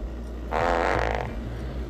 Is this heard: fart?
yes